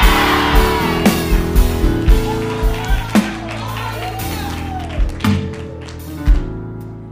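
An audience screams and shouts together in a loud, dense roar, with whoops and yells rising over the crowd and sharp taps or claps punctuating it throughout.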